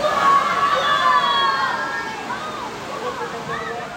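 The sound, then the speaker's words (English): A steady roar of gushing water from a museum's multi-level, four-story mountain flash flood exhibit fills the space, continuous and fairly loud, while voices murmur and chatter faintly over it. “And there's thunder, there's lightning, there's water gushing.”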